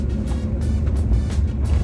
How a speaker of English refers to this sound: And out here, it gets pretty windy. I'm just gonna turn around on this highway.